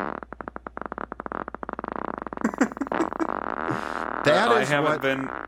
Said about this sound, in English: could you please edit in a fart noise here?